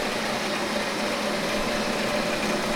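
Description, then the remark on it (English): A grain mill runs steadily, grinding malt for a 305-kilo batch of grain with a dense, continuous mechanical roar and rumble. It is loud, with no pauses or voices. “Let's start milling.”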